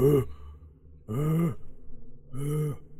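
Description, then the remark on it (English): A voice imitates heavy breathing: three loud, drawn-out, groaning breaths, evenly spaced, with short quiet gaps between them. “And then he leans down, and you just hear heavy breathing.”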